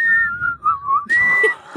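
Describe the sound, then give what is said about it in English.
A person whistles by blowing out into a microphone, a short, wavering tune, the pitch sliding down and then jumping higher into a sustained note, with a breathy, airy edge. “It's a funny face that you make when you're trying to whistle.”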